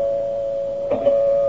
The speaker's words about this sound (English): She knew it would take him no more than 10 minutes to arrive at the apartment. She sat calmly, quietly controlling her excitement. Finally, the doorbell rang.